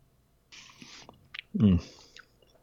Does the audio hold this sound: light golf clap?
no